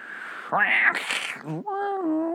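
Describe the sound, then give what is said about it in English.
A tumbleweed-style wind sound effect: loud, wavering howls that rise and fall in pitch, almost like meowing or a police siren, with a brief breathy gust in the middle. “I couldn't tell if I was just so used to city noises that I heard it as that, but I heard police sirens and cats. That's what I heard in that wind.”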